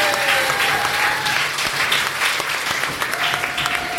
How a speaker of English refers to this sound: But hey, everybody, thank you so much for coming along to our first ever live show. It means a lot that you all came here and I hope you enjoyed it. Yay, round of applause for you guys.